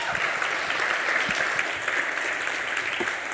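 A room full of people claps steadily, a dense, even wash of applause that holds at the same moderate loudness throughout without building or fading.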